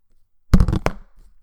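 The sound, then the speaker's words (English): A pop filter bangs against a microphone in a quick cluster of loud, boomy knocks, heavy in the low end, that rattle briefly and then fade into quiet. “And that was my pop blocker banging against the microphone.”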